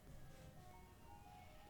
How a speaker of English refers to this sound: Is that ice cream truck on your end or mine? That's on you, baby. Take a listen. Ain't no ice cream trucks around here.